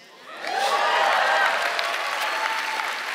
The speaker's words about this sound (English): It's okay to get emotional if you love Jesus. It's okay to clap when we say things in here.